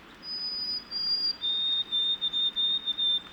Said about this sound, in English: Those are the sweet whistles of a white-throated sparrow. They used to actually breed here, but they don't anymore. So this individual is probably heading north to the Adirondacks or the Canadian North Woods.